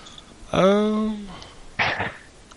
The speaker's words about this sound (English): Sorry, I can't shake this cough. I keep having to mute.